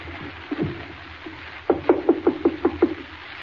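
A rapid run of seven sharp, evenly spaced knocks on the door of Colonel Bowles' quarters, loud and hollow-sounding, preceded by a couple of softer dull thuds, with no voices.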